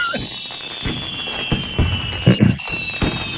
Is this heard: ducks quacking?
no